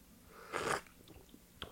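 A single short slurping sip of a whiskey sour cocktail: a soft airy burst followed by a few faint wet mouth clicks and swallowing sounds.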